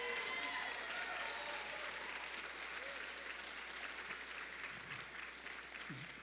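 An audience breaks into loud, sustained applause in praise of Jesus during a sermon, a dense, steady wash of many hands clapping that holds for several seconds and eases off only slightly near the end.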